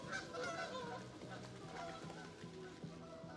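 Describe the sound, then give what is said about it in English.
A flock of geese honks repeatedly overhead, a busy overlapping chorus of nasal calls that sounds steady, with faint murmuring in the background. “Oh, shit, are these geese? Here they come.”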